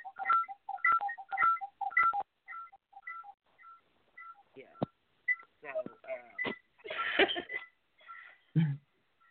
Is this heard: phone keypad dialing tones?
yes